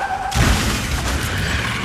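A brief high tire squeal cuts off into a loud, booming crash, followed by a sustained rumble and rattle of debris that slowly settles without fading out.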